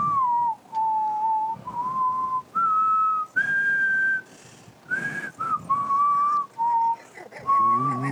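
A person whistles a song melody in clear, sustained notes that step up and down in pitch, with short pauses between phrases, fairly loud with no talking.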